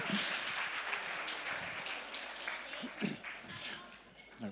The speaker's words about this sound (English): Give a round of applause, then you go, sit down.